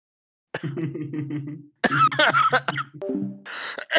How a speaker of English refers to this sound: I'm sorry, we just got an interruption. That's the methamphetamines making him cough. Crystal meth.